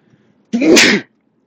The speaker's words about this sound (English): But, sorry, excuse me, that's a big sneeze. I ranted so hard that I started sneezing.